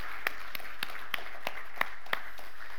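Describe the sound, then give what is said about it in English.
Congregation applause at an Easter church service dwindles to about seven sharp, evenly spaced claps over a low steady hum, fairly quiet, with no talking. “Heaven applauds.”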